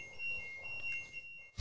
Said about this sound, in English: Is that my boyfriend setting off a fire alarm? Interesting.